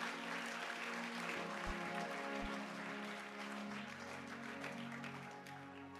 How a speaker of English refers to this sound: Give the Lord a mighty clap of him.